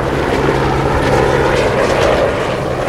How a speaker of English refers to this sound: Maybe that helicopter scared them all away.